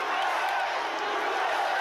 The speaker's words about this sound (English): As this crowd chants and sings for hours. And that's how you spread it, too. You open your mouth and let all those germs fly out. This rally is to support the lie that Trump won Arizona and the 2020 election.